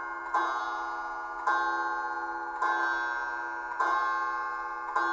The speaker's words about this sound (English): I like things like, is clock, is that a Halloween noise? This just sounds like a sound for a clock.